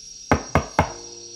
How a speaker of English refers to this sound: knocks on the door.